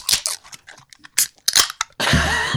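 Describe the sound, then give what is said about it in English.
Several crunchy, rattling scrapes like a hand rummaging through ice as a can is taken from a bucket, then a sharp crack of a Black Horse Lager beer can opening followed by a loud, steady fizzing hiss. No one speaks. “Okay, here's your second favorite sound.”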